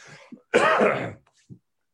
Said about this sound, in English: This is the crazy thing, and I gotta cough real quick, so I'm gonna pause this. Hold on.